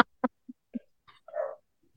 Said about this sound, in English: So, I don't know what they're barking at. They're barking at the clown that's apparently don't tell me that because they're at my front door. They're barking at the front door.